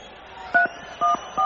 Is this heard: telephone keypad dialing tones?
yes